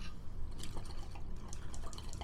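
Steady bubbling and gurgling of water as a Luca Dragon Egg hookah is started up, with small irregular pops and drips throughout and no one speaking.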